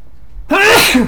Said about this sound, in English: Bless you. Thank you. Arvindorian allergies are just wild up here, huh? In this garden?